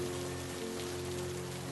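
Steady rain falls throughout, a continuous even hiss of drops with low sustained humming tones underneath, moderately quiet and without any voices.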